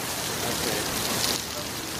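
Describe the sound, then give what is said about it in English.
Heavy rain pours down steadily, a dense, continuous hiss of drops drumming on surfaces, loud and unbroken throughout. “It just started fucking pouring over here.”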